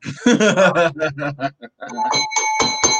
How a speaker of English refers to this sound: get the bell, baby. You get the bell for that one.